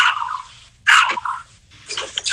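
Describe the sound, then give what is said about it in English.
A small dog yaps several times in short, sharp, high-pitched bursts, with a brief pause midway and a quick flurry of barks at the end. “Sorry, I got a small sparky dog.”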